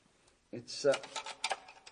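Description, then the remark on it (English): A key scrapes and turns in a stiff door lock, producing a cluster of sharp metallic clicks and rattles that stutter unevenly over about a second and a half. “We have to go down even further than we are, though, and to do that, I must unlock this door. We keep the key here.”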